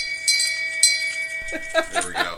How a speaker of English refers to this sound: There we go. So, nice. Portland gets the shame bell this week once I get it operational.